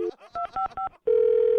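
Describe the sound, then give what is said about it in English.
Three quick pairs of electronic keypad beeps, a short pause, then a steady, unbroken telephone dial tone after the call is hung up, humming on at an even mid pitch until the end. “So get off the phone, I'm going to hang up again, and then you deliver my pizza, okay?”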